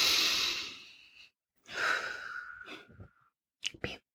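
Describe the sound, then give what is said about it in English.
A slow, deep breath drawn in with an airy hiss, then a long audible exhale after a short pause, followed by a couple of quick softer breaths, fairly quiet. “Or just take like a really deep breath.”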